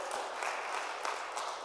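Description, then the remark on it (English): An audience claps for God during a sermon in a dense, steady wash of applause, many hands overlapping into a continuous crackling texture with no voices standing out. “Come on and clap for God right there.”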